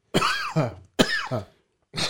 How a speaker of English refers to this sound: He's coughing. Is there weed in this thing?